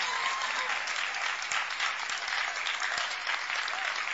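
An audience claps steadily for a pastor being introduced to the church, a dense, even patter of many hands for several seconds with no pauses, moderately loud and with no talking over it.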